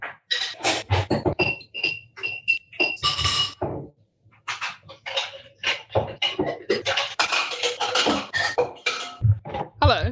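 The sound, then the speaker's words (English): A martini being stirred in a glass, with a busy run of bright, ringing clinks and jangles of ice against glass, fairly loud, pausing briefly before continuing. “Stirring. Oh my God, he's making actual martini.”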